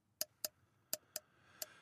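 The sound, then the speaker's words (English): Six sharp, bright clicks arrive in uneven pairs, each a crisp tick of two objects knocked together to mimic a pen being clicked, with a faint hiss rising toward the end. “You know what the sound of clicking pens is like?”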